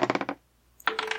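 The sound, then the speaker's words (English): Dice being rolled clatter in two quick bursts of rapid, bright clicks separated by a short pause, fairly loud with no voices. “Consider it almost done, because I have to roll my dice.”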